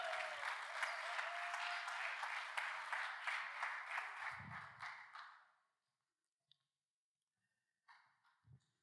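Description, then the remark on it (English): A crowd applauds a pastor as he comes up to share, steadily for about five seconds, a dense wash of many hands clapping, then it fades out into near silence with a few faint thumps and rustles afterward. “Yeah, let's clap one more time awkwardly for him.”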